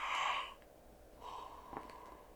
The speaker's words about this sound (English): Excuse me, sorry about that. Just a big yawn, I don't know why.